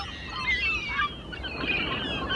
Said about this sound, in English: Computer, more birds.